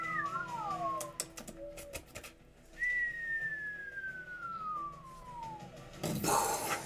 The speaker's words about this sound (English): What sound? It's like the whistle of it falling.